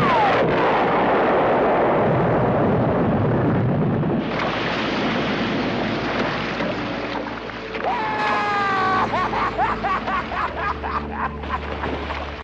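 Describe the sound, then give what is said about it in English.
A loud explosion roars out at once as the film character Brody shoots the air tank in a shark's mouth and blows up the shark while the boat sinks. The blast rumbles for several seconds before giving way to churning, splashing water and scattered crackling debris. No one speaks. “And luckily, Brody does manage to shoot and explode the shit out of the shark.”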